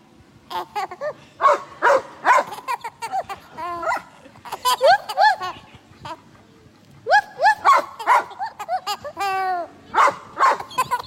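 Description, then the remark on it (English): Camp dogs bark and yip in a video, quick clusters of sharp, high-pitched calls, loud, with short pauses between bursts and some whiny, rising notes mixed in. “This is her laughing at the camp dogs.”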